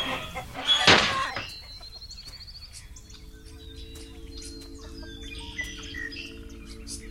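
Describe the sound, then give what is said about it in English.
Chickens cluck and chirp in a busy coop, opening with a loud squawking burst, then scattered higher calls over a steady low background hum, with no one talking. “No more pecking, scratching chickens cluttering up your mind.”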